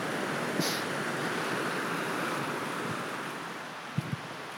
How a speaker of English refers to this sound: And now just going alongside a very noisy stream. Maybe this is the Nash.